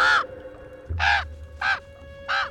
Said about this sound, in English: A raven speaks. Dark news, I fear.